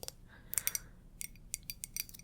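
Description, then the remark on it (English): Quiet tapping and scratching on an iridescent glass mug: a run of sharp, bright clicks in an irregular rhythm, with a brief scraping rub between them and no voices. “Tapping and scratching on glass. It's a glass mug.”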